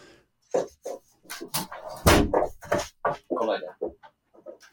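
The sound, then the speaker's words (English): A female dog barks at something outside, over and over in a rapid, irregular string of short, sharp yaps, some louder than others, with brief pauses between bursts and no talking. “She's barking at something out there.”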